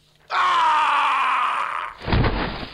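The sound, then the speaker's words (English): A loud, sustained scream rings out through a home for about a second and a half with no talking, then cuts off into a brief burst of low, rumbling noise. “In that moment, a scream reverberates throughout the home.”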